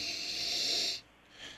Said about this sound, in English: Let me take a little sniff here, the aroma.